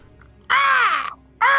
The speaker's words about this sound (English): As soon as you throw it, it hits something and it starts screeching.